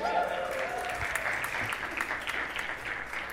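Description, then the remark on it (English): A crowd breaks into sustained, dense applause at the announcement that they are officially debt-free, steady and fairly loud for the whole stretch, with a faint voice briefly audible at the start. “And this is not another begging for applause, but incidentally, this week, the bank did finally clear that out, so officially, we are debt-free.”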